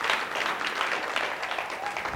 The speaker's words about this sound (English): Y'all with me? Y'all awfully quiet. If I'm making any sense to you, clap your hands and give God praise in the room. I'm preaching too hard for you to be this quiet.